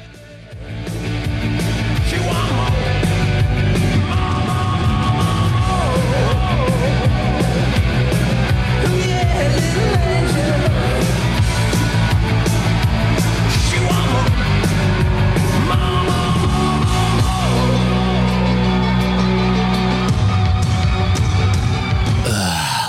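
A loud rock song chorus plays at full volume, with a singer shouting the word 'more' nine times, counting the delay echoes, in quick succession over pounding drums and distorted guitars.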